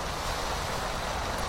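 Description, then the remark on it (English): Heavy storm waves roar in a continuous, dense wash of crashing water breaking over a boat, loud, with a rough windy edge and no pauses or voices. “The waves broke over the boat.”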